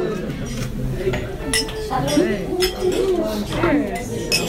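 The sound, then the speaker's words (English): Several bright glass clinks ring out in an irregular cluster as glasses are tapped together in a toast of "salud" to a beer, over a steady murmur of people talking. “Well, right now I just want to say salud and toast.”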